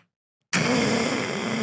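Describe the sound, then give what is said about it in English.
After a brief silence, a person imitates the noise made while yawning: a loud, breathy hissing sound mixed with a low voiced groan, held steadily for over a second before cutting off. “Talking about cats hissing at me. Do the noise again?”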